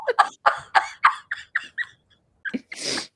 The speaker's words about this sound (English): You are so sneezy. It was a cough. You were sneezing before. No, I was coughing this whole time.